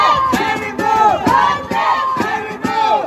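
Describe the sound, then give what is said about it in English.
A crowd of protesters outside the Capitol screams and yells at the senators through an electrical conduit tunnel, in loud, overlapping bursts, voices rising and falling in rough waves with brief dips between surges, no clear words standing out. “Protesters outside the Capitol attempted to scream at the senators through an electrical conduit tunnel.”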